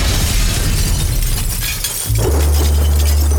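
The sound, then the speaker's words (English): A loud magical shattering effect of a Shatter spell being cast: a booming, crackling burst over deep rumbling bass that drops briefly, then settles into a steady low drone. No one speaks. “she's going to look back at everyone and say, ladies first, and cast Shatter.”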